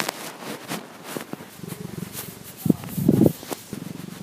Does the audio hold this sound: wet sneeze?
no